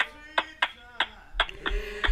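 Six sharp hand claps in a Gullah Geechee clap land in a steady, rhythmic beat, with a sustained voice running underneath and a few low thumps of feet patting along joining in toward the end.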